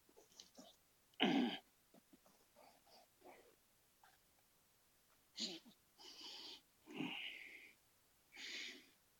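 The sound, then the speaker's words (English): A dog snorts, wheezes and grunts in several irregular bursts, some loud and breathy, squirming and restless while its toenails are being clipped. “I'm trying to clip my dog's toenails. Let me know if this is too loud.”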